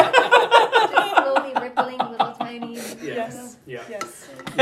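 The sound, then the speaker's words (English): Chainmail shaken in quick rhythmic bursts, its metal rings jingling and clinking loudly for several seconds before breaking into looser, scattered rattles. “Are we going to see through this chainmail?”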